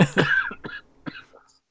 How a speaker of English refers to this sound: Oh, should I have done a real cough?